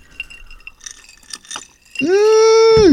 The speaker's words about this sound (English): Look, you know what? I got a little something right here. Let's go ahead and clink it up right quick. Oh, yes. Everybody got something. It's the 100th episode.